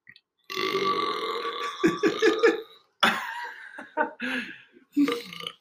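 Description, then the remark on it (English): A long, croaking burp rumbles from the back of the throat, loud, followed by a few short throaty bursts that sound like chuckles or coughs. “I can't tell if it's like half a burp or half of me just like croaking in the back of my throat.”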